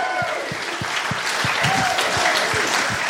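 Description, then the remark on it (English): A live audience breaks into steady, sustained applause, a dense wash of clapping with a few louder hand claps popping out rhythmically underneath and a faint cheer or murmur mixed in. “I'd love to listen to the applause”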